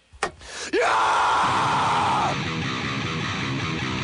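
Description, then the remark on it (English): A man lets out a loud, raspy scream in the style of a metal singer, harsh, holding for over a second before fading into rough noise after a brief sharp click. “Give me a scream, ….”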